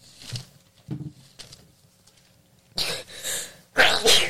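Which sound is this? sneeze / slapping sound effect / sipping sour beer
sneeze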